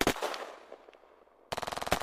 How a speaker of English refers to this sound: But he gets shot down as a few bullets hit his arm and legs.